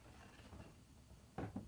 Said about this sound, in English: So you close the soji screen door,